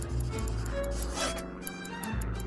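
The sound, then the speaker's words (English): A pencil scribbles on notepad paper as someone writes down sums to work out their position and remaining distance while navigating a flight, in a steady run of scratchy, rasping strokes, with a few sharper flicks near the end. The scribbling is fairly soft and there is no talking. “With one eye on the treetops and the other on her paper, she began to scribble down sums to figure out exactly where she was and how far she had left to go.”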